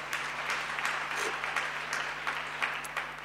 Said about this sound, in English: Can we give Jesus a clap offering?